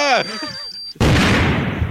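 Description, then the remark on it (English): A fantasy football show's super short timer running out: a brief warbling, falling electronic tone over a thin steady high beep, then an abrupt, loud, noisy blast that fades slowly over the final second. “That's the super short timer. And you failed.”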